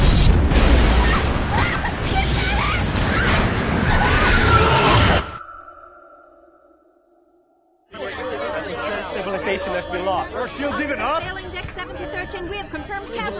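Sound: movie explosions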